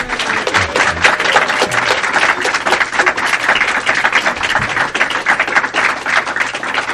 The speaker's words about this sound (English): Everyone there, can you applaud loudly so they...